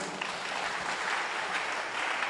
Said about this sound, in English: Yes, brah, clap your hands for them.